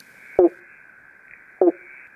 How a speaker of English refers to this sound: All right. So that's a banjo frog. It's one of the most iconic kind of Eastern Australian frogs. It also has a really crazy common name, particularly that's used in the south of the mainland of Australia, of the Pobblebonk,